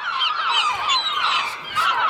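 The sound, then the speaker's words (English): A man's voice mimics a goose, letting out a steady run of loud, nasal honks that fill the whole clip, with no actual speech. “what they call him the Birdman, … here, he travels the same way”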